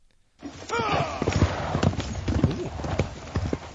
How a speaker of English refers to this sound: A knight charges up the slope at you. His horse pounds at the ground, carrying the heavily armored warrior as if you were a child's doll.